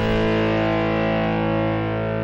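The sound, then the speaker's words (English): Loud outro music with a heavily distorted, buzzing sustained chord that holds steady throughout, no voices over it. “And, you hear this music? All right. Gotta go.”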